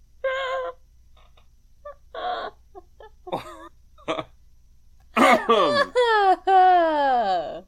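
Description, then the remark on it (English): Someone clears their throat: several short, croaky hacks separated by pauses, building into louder, longer strained rasping noises near the end. “Oh, something in my throat.”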